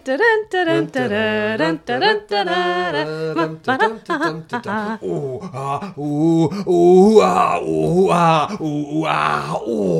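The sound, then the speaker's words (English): A voice imitates sex noises with a string of drawn-out, wavering moans and groans, building into louder, breathier rhythmic bursts toward the end. “Yeah, I know, but it was supposed to sound like sex noises, but it just came out as West Country noises.”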